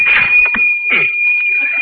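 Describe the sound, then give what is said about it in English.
A cash register being tried out with a push of a button rings with a steady, high, sustained tone while a couple of clattering, scraping bursts mark the drawer sliding open. No one speaks. “That cash register draw hit me right in the stomach again.”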